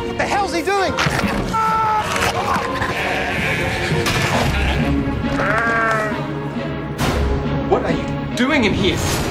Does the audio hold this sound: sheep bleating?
yes